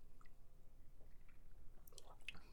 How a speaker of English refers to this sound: Ooh, so good once it hits your lips. I'm drinking the Rock's energy drink.